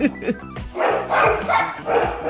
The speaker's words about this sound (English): I think everybody's dogs have checked in today.